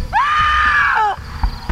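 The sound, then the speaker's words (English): A person rushing out of a building into a parking lot on a cold night gives a single piercing scream of terror. It rises sharply, holds loud and steady for about a second, then cuts off, over a low rumbling background, followed by a brief knock. “I was screaming my head off as I surfaced into the cold night air.”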